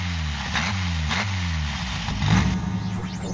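A Volkswagen Beetle car engine idles with a low, throbbing hum, revving up in several short bursts that rise and fall in pitch, fairly loud, with no one talking. The Beetle is a model first made in 1938.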